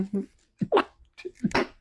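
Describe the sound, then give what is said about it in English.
Two sharp sneezes in quick succession, each a short voiced intake followed by a loud, breathy burst, with brief vocal sounds just before. “Oh my God. Bless you.”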